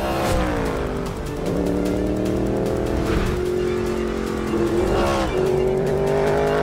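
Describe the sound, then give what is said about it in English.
The 5.4-liter V8 engine of a Multimatic-built Ford Mustang GT3 race car roars loudly, its pitch climbing and then dropping at each of several gear shifts, steady and continuous with no talking. “The car, which was initially announced with a 5-liter power plant, was unveiled with a 5.4-liter V8 that sounds amazing.”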